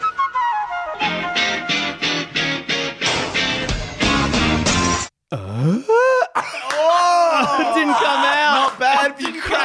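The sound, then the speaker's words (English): A loud voice imitates Tim Allen waking up and yawning: a run of rhythmic, tuneful bursts gives way to a deep swooping groan, then long stretching vocal glides rising and falling. “That was Tim Allen waking up and yawning.”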